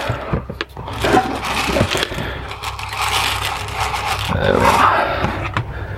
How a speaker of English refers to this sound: Just topping up the chicken's pellets.